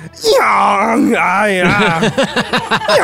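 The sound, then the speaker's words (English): A man's voice imitates how Arnold's pet donkey would sound: a long, strained groaning call followed by a rapid run of rhythmic hee-haw pulses, loud and alone with no other sounds. “What would Donkey Arnold sound like?”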